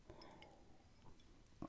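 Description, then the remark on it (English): Someone drinking water: faint clinks of a glass and soft wet sipping sounds, with a louder knock or gulp at the very end. No one talks. “And I am drinking some now, so I'm doing very well.”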